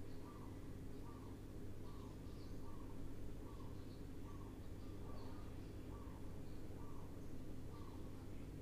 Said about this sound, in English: Can you listen to the sounds of the birds?